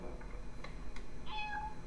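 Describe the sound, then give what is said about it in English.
A cat lets out a single short meow, fairly faint and high-pitched, preceded by a couple of soft clicks against a low, steady background hum. No one speaks. “What did we get a cat?”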